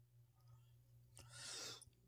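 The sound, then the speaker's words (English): A man's single short, muffled cough bursts out after a quiet stretch, followed by a breathy rush of air, over a steady low electrical hum, with no talking. “I'm gonna mute his source for that part so there is no cough.”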